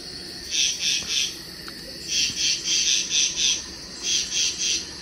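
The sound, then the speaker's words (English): Frogs croak at a waterhole in the evening where people are fishing, in rhythmic bursts, mostly in runs of three quick calls, repeating steadily over a faint outdoor night hum. No one speaks. “All those frogs and things.”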